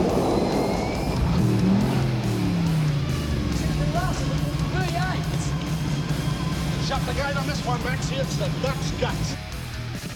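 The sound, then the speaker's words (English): A 351 V8 race car engine runs loud, its deep rumble shifting in pitch as it revs, with chirping sounds scattered over the steady roar. “Just listen to 351 work.”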